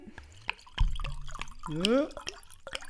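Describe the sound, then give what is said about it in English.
Slovenian wine glugs out of a screw-top bottle in a short pour, with a few hollow gulping bursts rising in pitch, plus scattered drips and clinks around it. “Oh, good glug.”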